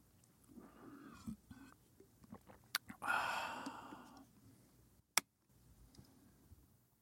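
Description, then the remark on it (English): Quiet sipping of water: a few small clicks, then a drawn-out airy slurp lasting about a second, followed by a sharp gulping click. No one speaks. “And another sip past my lips will cross.”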